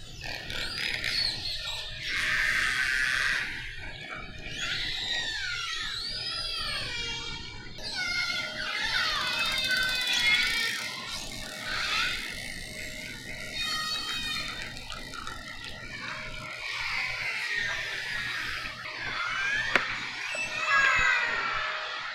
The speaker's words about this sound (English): That was a group of orca whales that were traveling around the San Juan Islands in Washington State last summer.